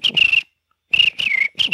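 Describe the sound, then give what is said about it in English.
A person whistles an impression of a cricket's chirp in several short, shrill bursts separated by brief pauses, fairly loud, with a slight wavering pitch and breathy noise underneath. “this is my impression of a cricket”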